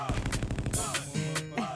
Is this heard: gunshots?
yes